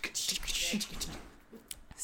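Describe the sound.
A voice imitates an old typewriter as a sound effect for the news, with a quick, uneven burst of clicky, hissing taps, ending in a few sharper clacks, fairly quiet.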